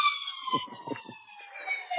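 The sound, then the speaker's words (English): A fire engine siren holds a steady, shrill tone that sags slightly in pitch as it passes, with low rumbling bursts from traffic underneath. Nobody speaks. “Oh, there's the Daily Fireman.”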